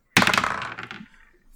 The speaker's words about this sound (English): let's grab our dice, let's roll them, let's try to cover these.